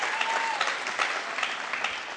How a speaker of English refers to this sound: Let's hear another round of applause for senior point guard and shooting guard